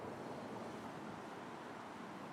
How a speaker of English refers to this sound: Let's go explore, and while we're at it, I want you to just listen to some of the sounds of this Seattle International District day. It's very cloudy, very rainy, very prototypical Seattle.